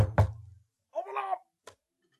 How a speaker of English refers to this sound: there's somebody at the door.